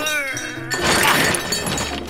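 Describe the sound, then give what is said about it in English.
A sustained ringing tone gives way to a long, noisy metallic clatter and crash as junk, including 400 pounds of copper pipes, is dumped into a car trunk, loud and jumbled for over a second. “Guy Raz, help me dump all this junk in the trunk.”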